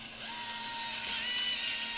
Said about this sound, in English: That's your phone? Yeah, it's my phone. I have it set on low right now.